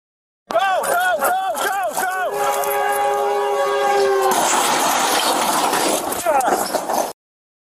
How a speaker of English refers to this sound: heroes in action of the LAPD saving the life of a pilot who made an emergency landing on the railroad tracks at San Fernando Road and Osborne Street in L.A. right before an oncoming train collided with the aircraft. Check this out.